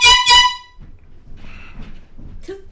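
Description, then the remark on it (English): Two loud, piercing air horn blasts in quick succession, harsh and brassy, followed by fainter background rustling and noise. “It's an air horn.”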